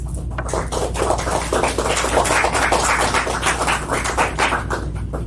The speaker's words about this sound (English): I hope that applause was for me and not for Father Patrick, I'm sure.